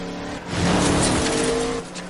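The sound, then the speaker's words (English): A car roars past at speed with its tires squealing, a loud rising-and-falling whoosh with a sustained high screech lasting about two seconds, no voices. “Crazy grandpa car.”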